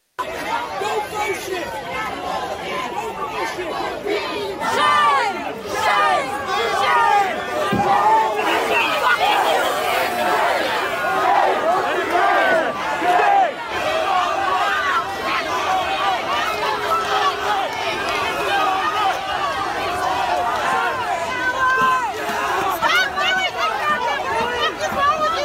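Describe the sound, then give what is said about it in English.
A large crowd shouts and yells at police officers who are trying to put out a fire of MAGA hats, dense continuous hubbub with overlapping raised voices and occasional louder cries cutting through the steady roar of many people. “Now, if you can't tell, they're yelling at the cops here who are trying to put out this fire, which is, I guess, a fire of MAGA hats.”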